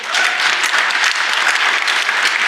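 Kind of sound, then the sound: crowd, audience applause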